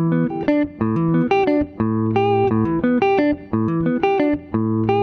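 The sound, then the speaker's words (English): A guitar plays the guitar part of a musical example, a short melodic passage of quick, bright notes and chords in a steady rhythm, sustained tones ringing together, with no voices. “And then here's what the guitar part sounds like.”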